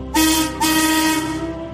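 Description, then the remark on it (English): The whistle of Marion, the railway steam shovel from Thomas the Tank Engine, blows two loud toots, a short one then a longer sustained blast, bright and piercing with a hissy edge, no voices. “Marion is bubbly and funny and has a whistle that sounds like this.”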